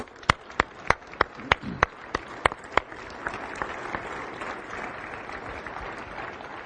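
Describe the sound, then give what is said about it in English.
A round of applause during a service for mission trip members, leaders and volunteers as they come forward to the front of the room. It starts with a few loud, sharp individual claps in steady rhythm, then swells into dense, continuous clapping from a crowd that carries on at an even level. “And give them a round of applause as they come up.”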